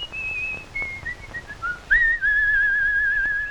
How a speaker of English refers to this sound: The whistle is a nice touch.